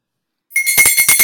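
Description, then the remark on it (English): After a moment of silence, a small bell starts ringing, a bright, high sustained tone with rapid rhythmic jingling pulses, fairly loud and with no voices. “Welch says that every time a bell rings, an angel gets its wings.”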